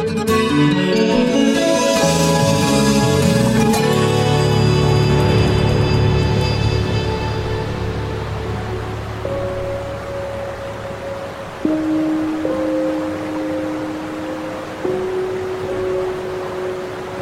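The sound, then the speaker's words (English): A showery gust of wind rushes across an open field, a steady broad roar that swells and lingers, with fading tonal ringing at first and faint sustained hums later. “The endless multilingual instructions are blown across the field by a showery gust.”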